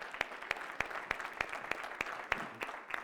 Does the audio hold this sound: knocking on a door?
no